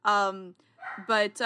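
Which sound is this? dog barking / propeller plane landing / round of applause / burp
dog barking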